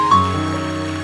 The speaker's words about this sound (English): Everybody clap your hands and say, I'm free.